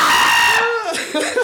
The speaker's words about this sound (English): don't yell into the mic like that.